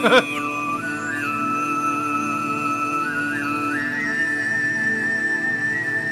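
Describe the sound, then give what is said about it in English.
Tuvan throat singing: a low, buzzing drone with a bright, whistling overtone gliding above it, then holding a steady high pitch. Continuous, with no talking. “Tuvon throat singing, guys. This is like the Mongolian shit, right?”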